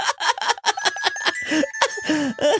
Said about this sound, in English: She's so aggressive with it, Jesus, dude. Bro. Right? Ryan told me about, he's like, dude, this Amazon ad I keep seeing on Twitter, like, it's this girl shaking these bells aggressively, and she is fucking, it's like she's boxing, she's dude.